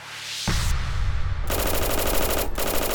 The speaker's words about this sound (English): The men the cops had led into the building opened fire, spraying bullets from their Thompson submachine guns.